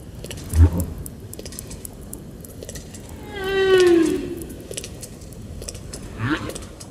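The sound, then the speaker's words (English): Underwater crackle of countless snapping shrimp repeatedly slamming shut their tiny claws, a dense, steady sputter of sharp clicks throughout, with a brief rising tonal call drifting through the middle. “Snapping shrimp raise sparkling clouds of sound by repeatedly slamming shut their tiny claws.”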